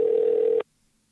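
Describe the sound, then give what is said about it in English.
A single steady telephone tone, like a ring or call tone, sounds clearly for just over half a second as someone places a phone call, then cuts off abruptly into near silence. No voices. “I'm going to call somebody right now.”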